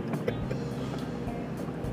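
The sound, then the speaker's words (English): A steady, droning rumble of road noise from inside a moving car, continuous and fairly loud throughout, with a few faint thumps and no clear voices. “We are doing another car cast, but with a buddy.”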